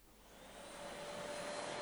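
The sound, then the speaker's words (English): A vacuum cleaner runs steadily around a kitchen, a broad whooshing roar with a thin whining motor tone, growing slightly louder as it goes. No one speaks. “I was vacuuming around the kitchen, generally keeping busy and trying to distract myself.”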